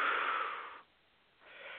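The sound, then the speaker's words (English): A deep, audible breath drawn in, a long airy rush followed by a short pause, then the start of another breath. “We're breathing with you.”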